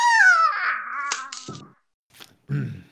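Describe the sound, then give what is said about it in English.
A voice imitates a dying bird's cry: a high, wavering squawk that slides downward and fades, followed by a short breathy rasp and a low, strained groan. “And you hear the bird go...”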